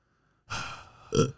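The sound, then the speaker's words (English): A single loud sneeze: a sharp breathy intake followed by an abrupt burst, with nothing else around it. “Bless you.”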